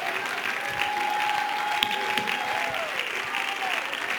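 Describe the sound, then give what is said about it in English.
An audience claps their hands in a steady, dense wash of applause that holds for the whole stretch, with a thin sustained tone and murmuring voices faintly beneath. “I wish we could stand to our feet and clap our hands and lift up our voice.”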